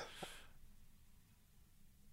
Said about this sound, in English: Sorry, I'm sneezing.